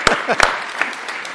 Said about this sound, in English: Give her a clap, because you're so brave.